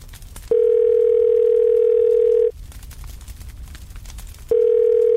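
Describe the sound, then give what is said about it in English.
An answering machine tone on Chris Waddle's answer phone: a loud, steady electronic beep holds for about two seconds, stops, then starts again after a pause, with faint background hiss in between. “Hi, hello, this is the answer phone of Chris Waddle.”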